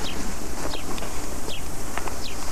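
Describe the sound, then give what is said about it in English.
Birds chirp and sing outdoors, with several short, high, downward-sliding calls repeating every half second or so over a steady wash of wind and outdoor noise. “Now, you hear the singing of birds.”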